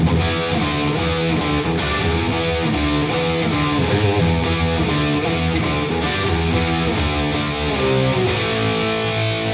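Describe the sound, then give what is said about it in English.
A heavily distorted electric guitar plays a steady run of thick, buzzing chords with a metal-style crunch, loud, with no voices over it. “Into something a little more metal.”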